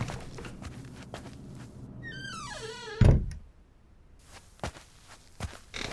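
A room door's hinge creaks with a falling squeal before the door thuds shut with a solid thump in a soundproof booth, surrounded by faint shuffling footsteps and soft room noise.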